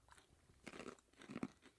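Crunching of hard, wasabi-coated nuts being chewed, with a couple of sharp bursts of loud crunches separated by quieter pauses, no talking.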